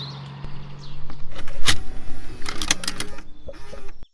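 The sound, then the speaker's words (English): A car tape deck mechanism whirs and clunks, with a low motor hum giving way to a series of sharp mechanical clicks and clacks as the cassette loads, then stops abruptly. “That tape deck sound actually came from my car, which still has a tape deck, believe it or not.”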